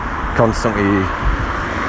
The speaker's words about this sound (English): Constant flow of cars going past me.